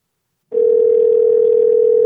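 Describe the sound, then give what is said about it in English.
A steady telephone dial tone, as someone places a call to a Taco Bell restaurant, starts abruptly after a brief silence and holds at a constant, fairly loud pitch with no voices. “So I had to make a phone call.”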